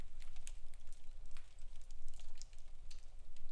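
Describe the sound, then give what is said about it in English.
Crinkly paper rustles and crackles in quick, irregular bursts over a low rumble, like wrapping being torn and peeled away from a gift, with no voices. “I'm unwrapping it.”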